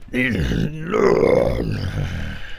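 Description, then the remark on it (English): During a game, a person imitates a creature's screech as it climbs onto a table, a strained, raspy vocal cry lasting about two seconds. It swells and bends in pitch midway, then trails off rough and growling, with no other talk. “And he lets out a screech like this.”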